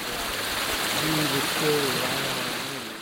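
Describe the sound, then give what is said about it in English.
Steady rushing water from a small creek on a hiking trail spilling over rocks like a little waterfall, a continuous hiss filling the scene, with faint voices murmuring underneath. “as I remember in particular we were on the trail, and there was a particular spot that had like a, I don't know if it was like a creek or what it was, but it was, you know, it was a very relaxing waterfall-esque sound, and I even recorded some of it.”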